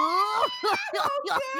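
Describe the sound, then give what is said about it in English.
A person screams in a run of drawn-out, wavering cries that rise and dip in pitch, loud, with no pauses between them. “And we hope you all have a very spooky and happy Halloween season screaming.”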